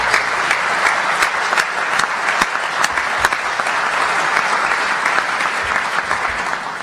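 An audience applauds steadily for several seconds, a dense, even wash of many hands clapping with scattered sharper claps standing out, loud and sustained without any talking.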